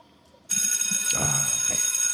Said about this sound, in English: So I'm going to go ahead and hit the bell real quick.